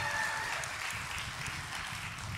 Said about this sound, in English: We're clapping for the marriage. Let's clap for the marriage, yes.